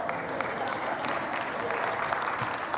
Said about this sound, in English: I hear some of you applauding, but don't you think he could do better?